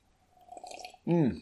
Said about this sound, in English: Drinking break! First one of the chapter.